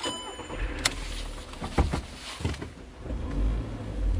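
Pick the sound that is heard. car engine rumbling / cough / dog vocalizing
car engine rumbling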